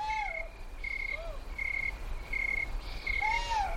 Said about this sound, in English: Nearby, what looked like two owls fight in the darkness.